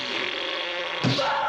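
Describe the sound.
A voice blows a buzzy, sustained raspberry imitating a fart, as the character Dim does at a woman singing opera in a bar, continuous for over a second with a brief rougher burst near the end, moderately loud.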